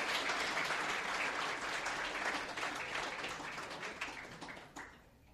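A crowd applauds a community's 2014 advocate member from MBN Design, many hands clapping in a dense, bright wash that holds strong for several seconds before thinning out and fading at the end.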